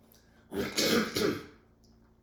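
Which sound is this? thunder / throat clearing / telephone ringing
throat clearing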